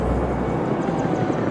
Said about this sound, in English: Hear the helicopters going over.